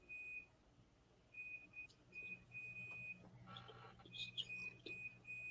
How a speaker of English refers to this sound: Am I hearing some beeping noises? Where was that going from? I was trying to figure that out too. That's probably my dryer. I'm doing one last load of clothes before I pack up. Sounds like you got the same kind of dryer.